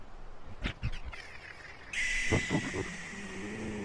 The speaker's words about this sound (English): Did you hear that? Hold on. I'm gonna roll down the window. What is that? I think it's a bird, but it's not like the condor before. Could be an owl since it's ass o'clock in the morning. It's always the fucking owls.